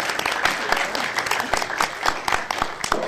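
An audience applauds steadily, dense overlapping claps forming a bright, crackly wash with sharper individual claps popping out, sustained at a fairly even level throughout.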